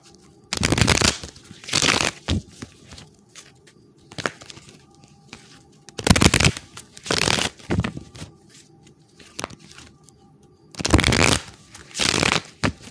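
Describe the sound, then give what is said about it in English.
A large deck of almost 100 love oracle cards is shuffled in three loud riffling bursts, each a second or two of dense flicking, with quieter handling and pauses between them and no talking. “The shuffle. Remember, this is almost 100 cards, okay?”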